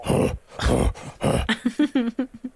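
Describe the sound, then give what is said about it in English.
A person imitates Groth, a creature clomping by on all fours with a gnome riding him, panting: three loud, breathy rasping huffs, then a quick rhythmic run of short, voiced, throaty pants, almost doglike. “Panting like a...”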